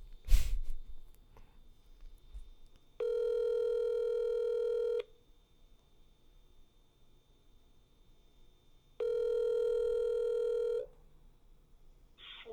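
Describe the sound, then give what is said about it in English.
A phone call ringing out: after a short click, two steady buzzing ring tones sound, each lasting about two seconds, with a long quiet pause between them. No one speaks. “No one wants to answer their phone. Okay, last time. Last chance.”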